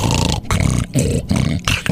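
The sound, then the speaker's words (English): A voice imitates a wife's loud snoring in bed: four harsh, rasping, growl-like snorts in a quick, steady rhythm, each separated by a brief gap, with no talking in between. “And she was snoring.”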